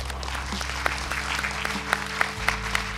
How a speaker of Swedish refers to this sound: Så, då är klockan 16.30 och dagens seminarium är slut. Och jag vill att ni alla samlas i en applåd för panelisterna.